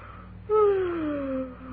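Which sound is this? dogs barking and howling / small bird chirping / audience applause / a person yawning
a person yawning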